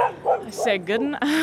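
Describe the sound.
A voice imitates a dog barking, giving a quick run of yipping, whiny barks with rising and falling pitch, moderately loud over about a second and a half.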